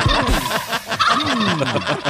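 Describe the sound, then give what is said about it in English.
A turkey gobbles loudly, a rapid, warbling burst of throaty calls that rises and falls over about two seconds with no pauses. “You thought turkeys were stupid.”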